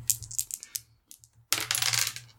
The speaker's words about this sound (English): You're going to roll 2 dice, add them together, and subtract a total of -4 from that.